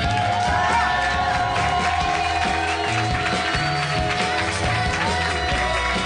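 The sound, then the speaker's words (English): A crowd at a live show at Meltdown Comics in Hollywood, California applauds and cheers steadily for the Dungeon Master, dense clapping mixed with whoops and shouts, loud and sustained without a break. “Please keep those applause going for your Dungeon Master”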